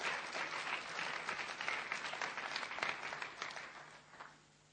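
A room full of people applauds steadily to welcome a speaker at an evening gathering, a dense wash of clapping that holds for several seconds before tapering off near the end.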